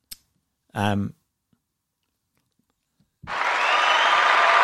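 A short vocal sound is followed by a few seconds of near silence, then an applause jingle bursts in suddenly and continues steadily, dense and unbroken, until the end, played as a belated congratulation to Danny Brough on 500 club games.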